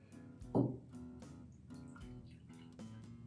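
A short stream of Pendleton Rye whiskey pours into a glass, with a brief louder splash near the start followed by a soft, steady trickle, quiet, with no talking.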